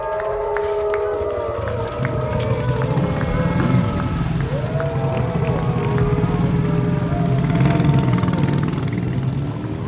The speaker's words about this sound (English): Wow, I can't believe all those ghosts had motorcycles. Oh no, they're gonna get to the studio so quickly.